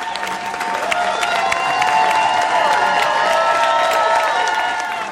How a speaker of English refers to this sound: I was going to say, should I put in like some crowd noise in the back? I'm like, we'll see if we can maybe digitally add something later.